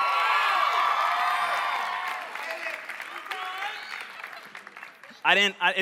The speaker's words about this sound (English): If you hear yelling from this section tonight, it's because I decided to bring my groomsmen to church tonight. So they're fired up in here.